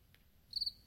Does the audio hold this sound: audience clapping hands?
no